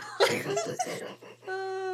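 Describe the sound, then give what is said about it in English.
A short, rough cough bursts out near the start, followed by hoarse, voiced throaty sounds and a steady hum. It is moderately loud, the sort of chesty cough that comes with a cold. “I have a cold, so my cough sounds like I'm dying of emphysema.”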